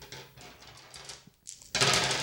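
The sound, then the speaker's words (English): Dice rattle and click in a rapid, irregular patter, pause briefly, then a louder, sustained clatter as they tumble across a hard surface, rolled in a game by a player trying to get six of a kind. “I'm going to roll the dice till I make a six of kind.”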